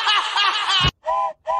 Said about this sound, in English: Choo-choo, bitches. What? The train left the station very early.